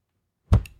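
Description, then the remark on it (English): A single dull, heavy thud, like a ball thrown as hard as possible smacking into someone's face, bursts out of silence, then dies away quickly with a short low rumble. No one speaks. “Throw it at my face as hard as possible, and I won't even catch it.”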